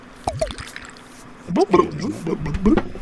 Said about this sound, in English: So I'm gonna put the microphone down to where my glass is so you can hear this pouring in. 1 second. Ooh, that's a nice sound.